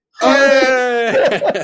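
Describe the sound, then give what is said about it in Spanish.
A loud wailing cry, one long sustained vocal note lasting about a second, then breaking into shorter sobbing, choked sounds. “Estoy aquí llorando después de estas palabras.”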